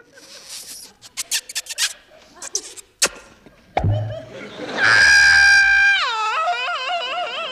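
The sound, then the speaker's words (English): A cartoonish shrieking scream rises after a few short scattered sounds, holding a loud, wavering high pitch that warbles up and down for several seconds before fading slightly. “he's scream absolutely on it. That Looney Tunes, that Sylvester the Cat Looney Tunes reaction.”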